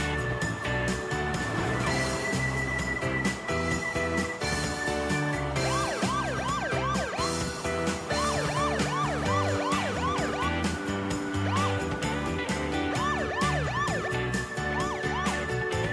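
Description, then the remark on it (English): A police siren in Los Angeles wails in rapid rising and falling sweeps, loud, layered over a dense, steady bed of music and city noise with no talking. “Yes! Police siren!”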